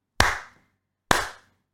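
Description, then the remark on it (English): Two sharp, loud claps land about a second apart, each with a brief ringing tail that fades quickly, like a sparse, half-hearted bit of applause. No one speaks. “The smattering of applause, too.”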